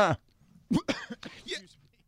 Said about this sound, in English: I choked once on the air